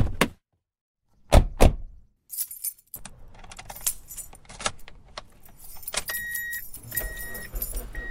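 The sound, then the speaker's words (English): Keys jangle in sharp metallic bursts, followed by a car door thunking shut, then an engine starts and the car pulls away with a steady rising hum and a few faint beeps. “Let's just take your car.”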